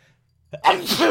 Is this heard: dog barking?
no